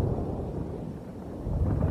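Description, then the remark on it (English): Low, continuous thunder rumbles steadily for the whole stretch, a deep rolling roar that swells slightly toward the end, with no voices. “Displeasure, all right, you're hearing through the thunder.”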